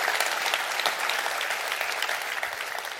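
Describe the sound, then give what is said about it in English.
A church audience claps their hands together at the preacher's call, in a dense, steady burst of applause, many overlapping claps forming a continuous crackling wash that holds at an even loudness throughout. “Clap your hands all over the house and say that's true.”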